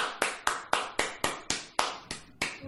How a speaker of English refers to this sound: But until then, my friend, we're going to give you a golf clap.